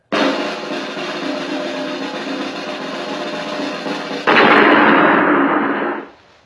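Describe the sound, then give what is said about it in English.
A sustained, rapid drum roll lasting about four seconds suddenly gives way to a louder, booming explosion effect that rumbles for a moment before quickly fading out. No voices. “I do have a drum roll. Maybe with a little bit of an explosion.”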